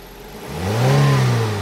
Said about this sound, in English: Should we get our seatbelts on and rev up the engine? Oh, yes, ma'am.